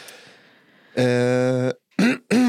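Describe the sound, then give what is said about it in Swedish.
Someone suddenly clears their throat loudly behind a person lying on their back: a drawn-out, voiced rasp followed by two short, sharp bursts in quick succession, with only a faint murmur before it. “Hostharklade någon plötsligt bakom mig.”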